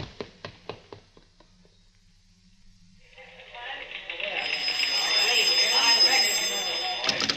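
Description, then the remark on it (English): A quick run of sharp clicks like a rotary phone being dialed, a short quiet pause, then a loud, steady telephone bell ringing that swells and holds until the end. “I gotta go make a phone call.”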